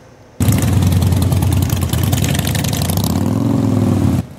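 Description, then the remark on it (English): Motorcycle engines of the Sikh Riders of Canada on their Solidarity Ride from Abbotsford to Kamloops rumble loudly and steadily at idle, with a throttle rising and falling in a rev toward the end, a continuous low growl with no voices. “The Solidarity Ride began in Abbotsford at 9 o'clock this morning, with motorcyclists joining along the way from Chilliwack, Lillooet and Kelowna.”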